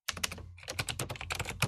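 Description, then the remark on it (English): Rapid typing on a mechanical Apple Extended Keyboard II, a dense run of crisp clacky keystrokes with a brief pause partway through, fairly loud with no voices. “So I am now the proud owner of an Apple Extended Keyboard 2.”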